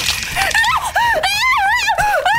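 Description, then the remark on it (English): A person screams in loud, high-pitched, wavering cries that rise and fall in a few short bursts, continuous, with no speech. “Listen, screaming makes it worse.”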